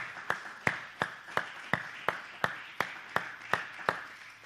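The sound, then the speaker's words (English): An audience gives God a hand clap of praise during a sermon: about ten sharp, even claps in unison in a steady rhythm of roughly two per second, with a faint wash of background noise and no voices. “And would you give our great God a hand clap of praise?”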